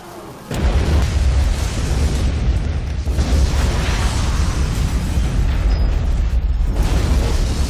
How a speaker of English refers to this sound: And after that Michael Bay-esque explosion, Abe, Mary, Sophia, Pat, Wilson, and Booth emerge from the smoldering rubble and the ashes of the once undead corpses and celebrates finally defeating the undead.